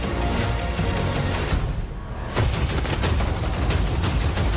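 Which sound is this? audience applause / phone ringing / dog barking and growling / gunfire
gunfire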